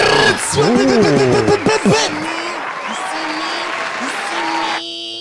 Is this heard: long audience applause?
yes